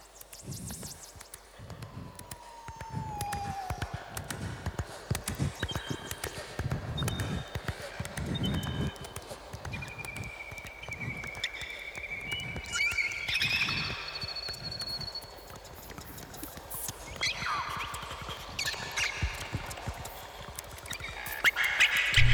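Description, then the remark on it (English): Rapid, dense mouth clicks and tongue pops clatter throughout, overlaid by whistled bird-like chirps and quacky animal calls, all made by one man's mouth alone at moderate loudness with no talking. “Is he making the bird noises too? It's all mouth.”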